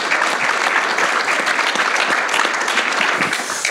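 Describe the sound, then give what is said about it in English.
Steady, dense applause from an audience for the man who runs the city's public transit system, a loud wash of many hands clapping at once that holds an even level for several seconds without a break. “Let's give this guy a round of applause for running a great system here.”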